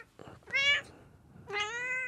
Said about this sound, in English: My cat is probably going to start meowing in a second. Maybe I'll just pick her up here.